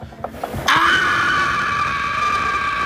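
A loud, sustained high-pitched scream bursts out after a brief moment of quieter sounds and holds steadily for a couple of seconds, close and piercing.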